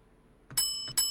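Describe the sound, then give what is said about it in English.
A bell rings twice in quick succession, each strike bright and metallic with a shimmering tone that keeps ringing until the next hit. It is fairly loud, with no talking. “You break the bell here. That's awesome.”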